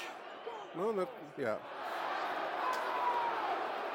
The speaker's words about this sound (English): Crowd howling from Millwall throw, but they're not going to get it over on that right side, dear listeners.